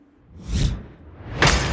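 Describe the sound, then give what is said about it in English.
A swishing whoosh of a dagger thrown across a courtyard swells and fades, followed about a second later by a bright, sharp shattering crash that rings out briefly, with no voices. “It shatters.”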